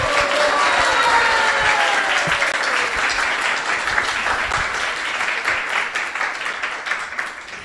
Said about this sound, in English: Let's give another round of applause to him.